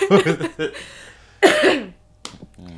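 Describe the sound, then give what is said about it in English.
A few throaty coughs and throat-clearing sounds, bursting in short clusters with brief pauses between, followed by a softer sniffle-like rasp near the end. “We over here sniffling and coughing and sneezing and shit.”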